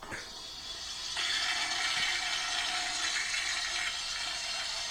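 long toilet flush

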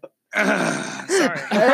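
coughing

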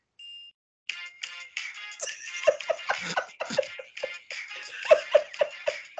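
phone ringtone ringing

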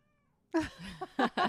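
cat meowing

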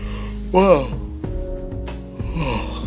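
yawn

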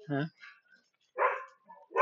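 dog barking

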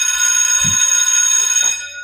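school bell ringing

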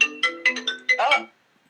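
mobile phone ringtone

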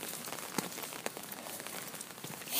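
rain falling

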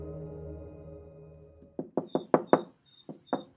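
knocking on a door

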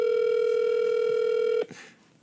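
telephone dial tone

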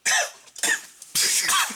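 coughing

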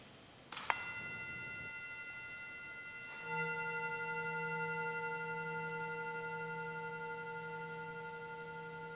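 bell ringing

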